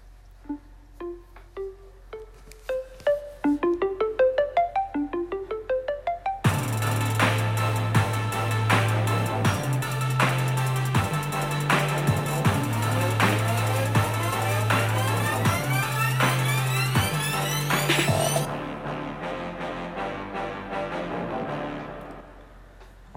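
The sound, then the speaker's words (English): A short instrumental theme tune: rising arpeggiated notes build for a few seconds, then a full band with punchy drums and steady bass kicks in loudly before cutting off into a brief fading tail. No voices. “So let's cue the music.”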